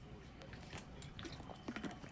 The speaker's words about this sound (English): Excuse me as I drink my water.